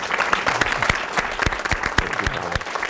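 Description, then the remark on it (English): An audience at an evening event bursts into steady applause, many hands clapping at once in a dense, sustained roar with a few sharper individual claps standing out. “And let's give a round of applause.”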